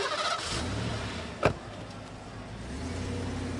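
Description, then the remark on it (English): A car engine turns over and settles into a steady rumble as the vehicle pulls away, with a brief sharp clunk partway through and no voices. “this is my car. You can't ride in my car. You have to walk home.”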